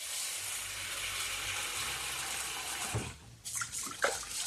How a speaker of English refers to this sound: But I'm going to add about 120 grams or half a cup of raw white rice into my bowl. And we're going to wash it underwater until the water runs clear.